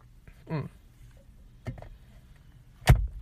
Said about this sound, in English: Yes, I vape. For those who are like, what's that weird noise?